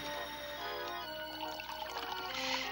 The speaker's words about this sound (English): And they're sitting down at the table, and they are starting to pour the wine. The robot servant is pouring the wine.